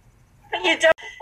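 small dogs barking

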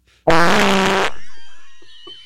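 fart

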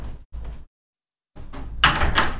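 door being closed

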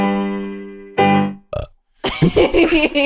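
burp

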